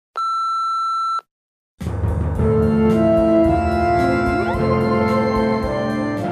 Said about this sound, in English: Please leave a message after the beep and I'll get back to you as soon as I can. Thank you.